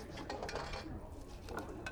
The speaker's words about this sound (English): You can see clearly where there are some dishes floating in midair and being sudsed up by a floating brush.